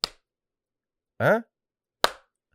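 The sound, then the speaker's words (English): Two sharp, loud hand claps about two seconds apart, a clap test of the acoustics in a home studio built in a garage, each trailing off in a brief ringing decay, with a short voiced vocal sound between them. “Oh, let's do a clap test.”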